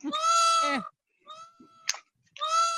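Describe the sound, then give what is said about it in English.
A peacock squawks loudly and harshly in three strained, nasal bursts, the first and last long and piercing with a shorter, thinner cry between them. “Pissed off bird.”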